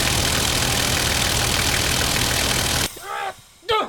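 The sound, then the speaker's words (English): A homemade pasta tank's engine runs with a loud, steady, gritty rumble for about three seconds, then cuts off abruptly, followed by short bursts of voices. “Let's get in the brand new pasta tank I made. Okay, let's go!”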